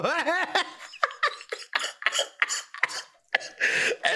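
A man coughs in a rapid run of harsh, raspy bursts, close and fairly loud, with a strained, voiced start and no speech.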